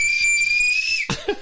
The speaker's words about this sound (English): Responding to the whistle.